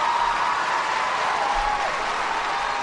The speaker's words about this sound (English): Nothing like canned applause, right? I mean, that's really what you needed.